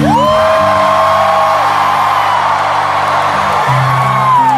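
A large concert crowd roars and cheers wildly, with shrill whoops and yells rising over a loud, unbroken wall of noise that holds for several seconds.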